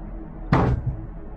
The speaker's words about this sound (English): He's still hitting the car. Should we... interrupt him? I mean, that car's really old. Maybe this is, like, something that he does to get it to work.